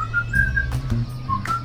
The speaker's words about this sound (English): Would you listen to that? The birds are celebrating this day of Jubilee with us.